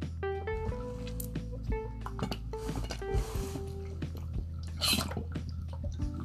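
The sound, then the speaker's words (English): Wet sipping noises as someone drinks water, with small gulps, clicks and a couple of louder slurping bursts over a steady low background hum. “Had to get a sip of water on this one.”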